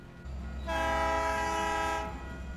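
A train horn blares for over a second, a loud sustained chord, over the steady low rumble of a train rolling past.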